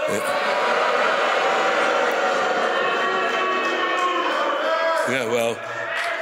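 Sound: crowd booing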